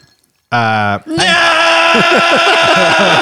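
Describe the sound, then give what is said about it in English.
A woman screams loudly at Donald Trump's presidential inauguration, a short harsh cry that breaks off briefly, then a long, strained, wavering scream that carries on over a noisy background of other voices. “It was screaming.”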